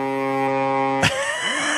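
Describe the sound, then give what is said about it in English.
A boat horn sound effect blares a steady, low, buzzy tone for about a second, then breaks off in a sharp burst of noise and trails into a rougher, wavering drone. No one speaks. “We throw a little boat horn sound effects in on a Friday.”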